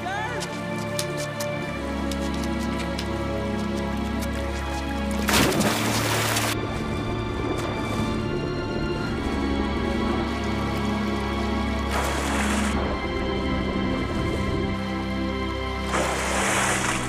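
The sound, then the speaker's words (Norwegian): Loud, rushing water roars steadily throughout, swelling in heavy surging bursts like a flood pouring in, with voices mixed faintly into the churning noise. “Vannet stiger!”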